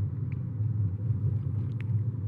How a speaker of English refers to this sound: But sometimes the highway can sound like the ocean if you listen to it in the right frame of mind for that.